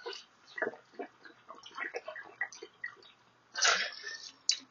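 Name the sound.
drinking water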